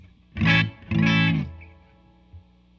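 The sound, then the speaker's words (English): Two loud electric guitar chords played through amps recorded in stereo, with the reverb turned off for a dry, unprocessed tone, the second ringing a little longer before cutting off into near silence. “All right, gonna turn this off, let you hear the dry sound.”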